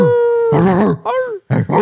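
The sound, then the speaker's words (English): A person imitates a dog, giving three loud, gruff voiced barks, the first preceded by a steady whining hum. “I'm barking for myself.”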